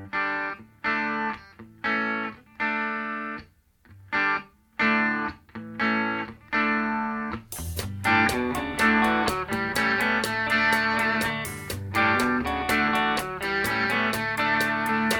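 A rock song plays, opening with choppy, stop-start distorted electric guitar chords before the full band kicks in around the midpoint with steady drums and driving, dense guitars. No one speaks.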